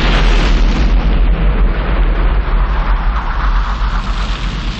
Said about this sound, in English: Yep, Jack's boat blew up thanks to Omar's henchmen.